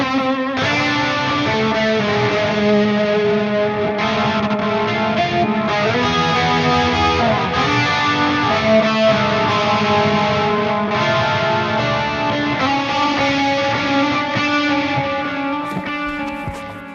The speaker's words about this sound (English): Then we've got Ping Pong, which turns on delay, a stereo delay and stereo reverb at the same time. Can we hear that? Sure.